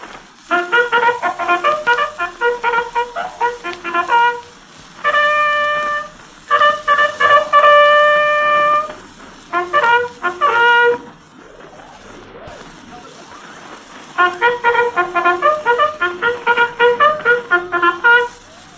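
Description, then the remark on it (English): A corporal bugler of the 171st Infantry sounds the French ceasefire call, cessez-le-feu: loud, bright phrases of quick repeated tongued notes mixed with long held tones, played in several bursts separated by short pauses, with no talking. “First he will sound cessez-le-feu, the ceasefire. Then he will blow the other calls he gave from the running board of the German car that night of November 7th, 1918.”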